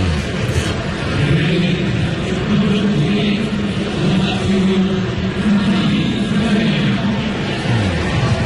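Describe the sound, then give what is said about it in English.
Ballpark organ music plays a run of sustained, mid-low notes over a dense, constant wash of crowd noise, holding steady and fairly loud throughout. “Oh, the organ. Oh, that's Wrigley like. Look at that. The hollow organ sound.”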